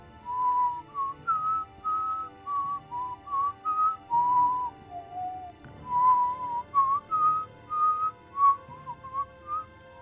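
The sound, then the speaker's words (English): As a locked gate door is unlocked, a low, slightly distorted whistle comes through as if from a distance, carrying a slow wavering tune of many short and held notes over a faint background hum, then fades off, with no talking. “And you suddenly kind of hear this low kind of whistle come through. It's distorted, and it seems far, and it just”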